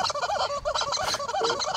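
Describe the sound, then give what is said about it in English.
A horse makes a strange, warbling noise, a rapid run of wobbling, gobble-like yelps that carries on without a break for about two seconds, fairly loud, with no one talking. “I gotta shoot this horse if it doesn't stop making this noise.”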